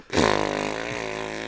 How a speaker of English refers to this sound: If my parents called me and had me listen to a fart sound, I don't even know what I'd be like